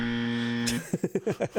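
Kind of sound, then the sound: signal or alarm, game show buzzer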